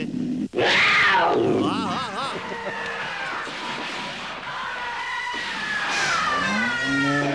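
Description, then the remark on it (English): A mountain lion roars and snarls in a loud scuffle with a man, with wavering growls, grunts and thrashing noise churning continuously for several seconds before easing slightly. “Mountain lion's tied up out front. I'll be right back. Come here, you mountain lion.”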